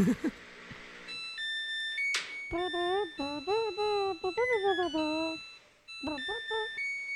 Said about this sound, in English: This is what it makes when the washer's done. Sounds like. Yeah. Sounds like we're landing.